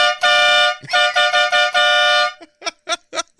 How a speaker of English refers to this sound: It's like a train horn.